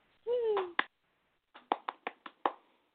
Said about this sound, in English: Round of applause.